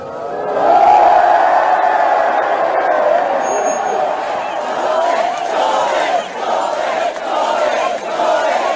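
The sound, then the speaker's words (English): A large crowd of thousands in the street in Hyde Park, Leeds, chants and cheers loudly and continuously as a man gets off a battle bus at a rally. A dense roar of many voices with rhythmic surges in the chanting; no single voice stands out. “I've not heard that sort of reaction, that sort of chanting since I was down the road at Headingley watching England in the one day.”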